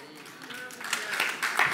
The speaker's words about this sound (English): You see these claps? They getting quiet.